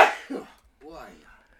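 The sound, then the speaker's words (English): A sharp, breathy sneeze bursts out loudly, followed by a softer short exhale, then a brief voiced sound like someone speaking or groaning afterward. “Gesundheit.”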